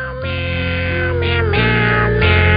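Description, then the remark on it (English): A man's voice imitates a cat, meowing Christmas carols as a sustained melody in shifting pitched notes. It is loud, with a buzzy, effects-processed tone and no spoken words. “It's the guy in the office that talks like a cat, singing your favorite Christmas carols.”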